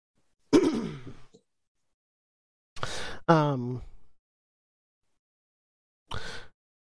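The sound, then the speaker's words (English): Someone in the background coughs in a few separate harsh bursts spread over several seconds, one drawn out with a rough, throaty groan, with silence between them and no talking. “I definitely hear someone coughing in the background.”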